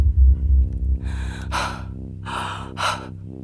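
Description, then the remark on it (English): Heavy, panicked breathing from a person looking around in panic, with a few sharp, ragged gasps coming in quick succession over a low droning background. No talking. “I'm breathing heavy, looking around in panic.”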